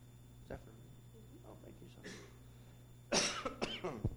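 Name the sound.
coughing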